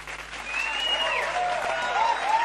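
Steady audience applause, a dense wash of clapping that stays loud and even throughout, with a few faint voices and whoops rising above it.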